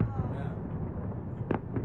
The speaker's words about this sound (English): Wait, it actually has sound too? No, there's fireworks going off in the background. Okay, I was like, whoa, that's a nice speaker too. Yeah, now look around, there's fireworks going on.